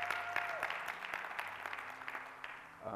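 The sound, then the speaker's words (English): An audience claps together to honor their bishop, a dense, steady patter of many hands with sharp individual claps popping through, holding at moderate loudness for the full few seconds with a faint sustained tone underneath. “In Jesus' name, that's a good place to clap.”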